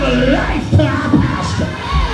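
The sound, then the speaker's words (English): An audience erupts in loud, overlapping shouts and yells of 'glory' in response to the preacher's call, a dense burst of many voices crying out together for a couple of seconds. “Somebody scream glory in here.”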